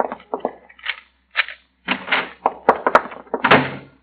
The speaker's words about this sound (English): Get the door open fast.